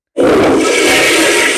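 A toilet flush starts abruptly and roars on loudly, a steady rush of churning water with no voices, still going when the short clip ends.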